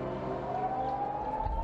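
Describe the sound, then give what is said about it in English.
A siren wails in the morning with a steadily rising pitch, sustained and fairly prominent, over a low rumble of traffic in the background. No one speaks. “Next morning, I was woken up by a siren.”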